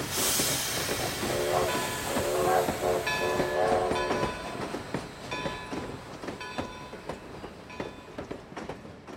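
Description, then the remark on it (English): The red Swiss Bernina passenger train pulls away on the rails: a burst of steam hiss and a short horn blast, then steady rhythmic clacking of wheels with a faint metallic whine. “By the time they arrived there, the Bernina had already left.”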